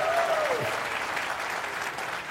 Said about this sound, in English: That's why you're applauding.